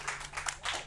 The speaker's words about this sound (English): a round of applause.